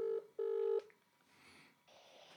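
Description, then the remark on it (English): Telephone dialing tones as a call is placed live on a radio show to a man in Brisbane: two loud, steady electronic beeps, the second longer than the first, followed by a faint hiss on an otherwise quiet phone line. No one speaks. “We'll see if he'll take this call.”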